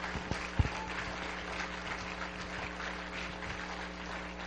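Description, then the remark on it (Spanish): A church audience applauds the Lord together, a steady wash of many hands clapping at moderate volume, with a low hum underneath and no speech. “Vamos, por favor, regálele su aplauso al Señor de la gloria.”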